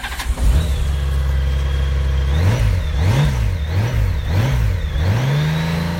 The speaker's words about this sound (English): And that motorcycle you just heard belongs to this gentleman here, all the way from sunny Southern California, Mr. Stacy Trotter.